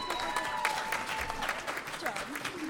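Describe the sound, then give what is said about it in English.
An audience bursts into sustained applause for the first two participants of an on-stage debate, many hands clapping in a dense, steady patter at fairly even loudness throughout, with faint voices mixed into the crowd noise. “Now, a big round of applause just for being the first to get up here and do this kind of silliness.”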